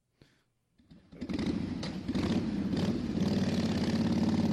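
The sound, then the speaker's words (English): After a brief quiet moment, a motorcycle engine roars in as a bike comes by, its rumbling, revving drone swelling quickly and staying loud through the end. “Oh, here comes another bike.”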